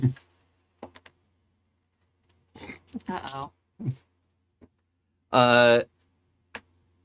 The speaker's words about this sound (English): Roll some dice. Perfect. This is what I needed. Oh. Roll some bones.